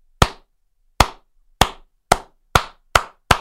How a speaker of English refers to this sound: You know what? Let me give you a slow clap.